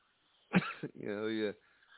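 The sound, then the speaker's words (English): A single fairly loud cough, caused by the building the speaker lives in, bursts out, followed by a short rasp and a longer voiced, throaty sound like a hoarse clearing of the throat, then quiet. “It's this place makes me cough.”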